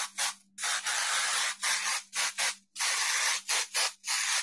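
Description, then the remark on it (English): A lavender spray bottle, sprayed near a litter box, hisses in a series of fairly loud bursts, some quick and some held longer, in an uneven on-off pattern like Morse code, with brief silences between them. “How do you do Morse code with a spray?”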